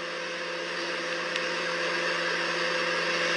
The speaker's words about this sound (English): Aha! The microwave is running unattended. That's right. And there's a can of paint thinner inside. What? Oh my goodness. There's a can of paint thinner inside the microwave.